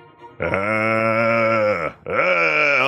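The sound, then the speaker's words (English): A voice lets out a zombie-like growl: a long, loud, droning groan, a brief break, then a second groan that swells upward in pitch and holds. No words are spoken. “did I hear you growling brains?”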